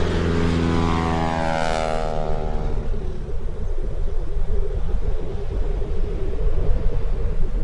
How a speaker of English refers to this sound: And it hits you first, and it hits you hardest when the sound of that plane just starts to fade. And then it's gone.